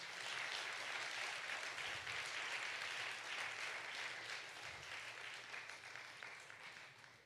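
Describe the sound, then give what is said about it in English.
A crowd applauds these families steadily, with dense overlapping claps forming a bright, sustained wash of sound that holds strong for several seconds before gradually tapering off. “Let's give these families a round of applause.”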